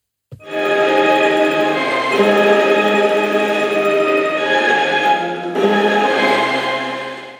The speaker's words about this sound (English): So cycling along through fields, villages, parks and towns, I built up a collection of thousands of different notes and tones. When I combined all of these sounds, it created a lovely section of chords and melodies. This is just one of them.